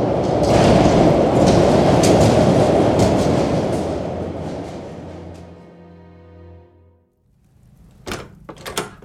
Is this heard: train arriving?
yes